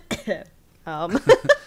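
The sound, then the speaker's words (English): Several short coughs in two clusters, separated by a brief pause and a voiced throaty sound, moderately loud with a rough, hacking quality. “You were coughing like, hint, hint.”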